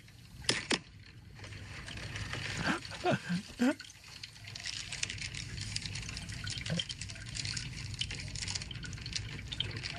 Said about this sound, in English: I'm washing out my coffee pot to make coffee for the next morning.